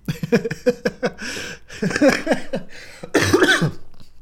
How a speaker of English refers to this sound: Ah, had that problem where I laughed too much till I coughed.